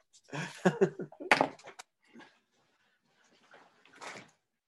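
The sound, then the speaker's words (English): A door is handled to let a dog out: a burst of rattling and clunking, a solid thump as it swings, then quieter shuffles and one last soft bump, with no one speaking. “I've got to let my dog out.”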